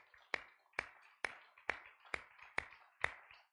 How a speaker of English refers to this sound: If you love the Lord tonight, give him another hand clap of praise.